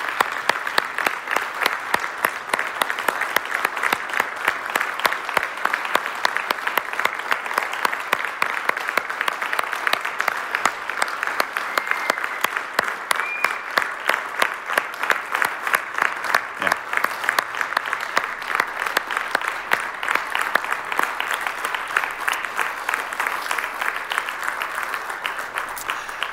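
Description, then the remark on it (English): A church audience applauds steadily for nearly half a minute to honor a couple, a dense, even patter of many hands clapping at once, sustained at a fairly loud level with no pause. “would you join me one more time in honoring, first, as it says in 1 Timothy 5, Wayne Leslie Kent with a little round of applause”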